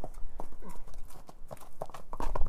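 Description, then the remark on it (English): Horse hooves clip-clop in an irregular series of sharp knocks as horses are being moved, a little Mustang led over to its own paddock. A steady wind-like rush of wind gusting at 19 miles an hour, at 31 degrees, and a low rumble run underneath. “I'm going to have to move some horses here.”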